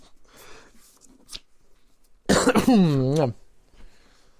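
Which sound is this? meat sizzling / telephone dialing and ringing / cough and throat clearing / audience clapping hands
cough and throat clearing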